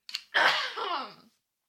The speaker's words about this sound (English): I think I need to clear my throat.